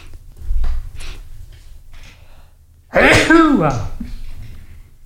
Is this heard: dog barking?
no